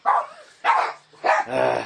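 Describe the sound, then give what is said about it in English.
A dog barks three times in quick succession at a package delivery, loud, the last bark drawn out into a longer, tonal yelp. No one speaks. “I got a dog interruption here.”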